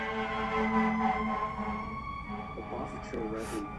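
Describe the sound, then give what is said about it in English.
A passing fire truck's siren blares loud and steady for a few seconds, its sustained wail filling the scene, with a voice briefly audible toward the end. “Fire truck.”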